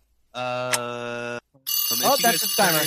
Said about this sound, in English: That's the timer. Damn it. That's the timer. Ah, yes. The timer's up.